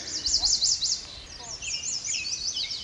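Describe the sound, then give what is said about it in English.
A downy woodpecker calls amid other singing birds at Martin's Landing in the Fort Boise Wildlife Management Area, Idaho: rapid series of high, sharp chirping notes that sweep up and down, repeating in quick bursts over a steady background hiss, with no talking. “I heard a downy woodpecker.”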